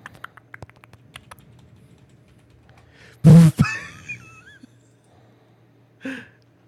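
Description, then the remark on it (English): Light, rapid typing clicks on a computer keyboard for a few seconds, then a loud sudden burst with a falling squeal cuts in, followed later by another short burst of noise. “Listen to all that typing.”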